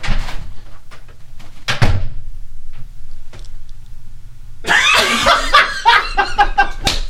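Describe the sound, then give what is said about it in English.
A few sharp knocks and clicks, then a long, wavering creak of a door swinging open, a sound effect, loud, with laughter mixed in toward the end. “I'm going to use this door at least like two more times.”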